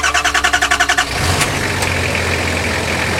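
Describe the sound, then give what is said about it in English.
A pickup truck engine cranks with a rapid rhythmic starter whir for about a second, then catches and roars into a loud, rumbling rev that holds steady, with no talking. “Budge has the truck for you. With the Jism's power smoke engine, it rolls more coal than the Industrial Revolution.”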